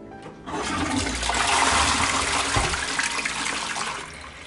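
A toilet flushes, a sudden loud rush of water that swirls steadily for a few seconds before tapering off slightly at the end.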